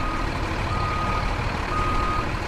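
A garbage truck's engine rumbles steadily, with a thin, high reversing beep sounding faintly above the low drone throughout.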